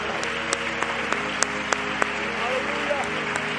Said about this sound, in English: Let me just provoke you one more time to clap your hands unto the Lord.